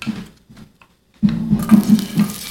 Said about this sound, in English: Oh, that's what I was trying to get, that sizzling sound. So at home, when you hear that sound, you know that you're on the right track.